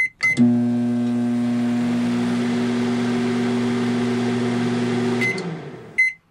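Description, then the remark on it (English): A microwave oven, plugged into a power board, runs with a steady electrical hum for about five seconds, bracketed by a short beep as it starts and a few beeps once it stops. “Okay, and now the microwave.”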